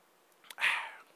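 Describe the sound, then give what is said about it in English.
A single quiet slurping sip of Dr. Pepper soda, preceded by a faint click, lasting well under a second with no talking around it. “Pepper, but I am going to take a sip because it is a delicious beverage.”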